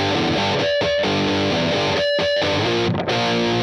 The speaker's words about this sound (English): Like analog, yeah. I heard some like analog delay through the echo in the chat.